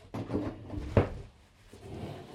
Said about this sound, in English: I'm switching chairs.